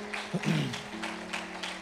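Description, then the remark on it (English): A short burst of church audience applause for the Sunday volunteers, a soft, diffuse patter of many hands clapping together over a low, steady hum, fading a little toward the end. “Can we give them a big hand clap today?”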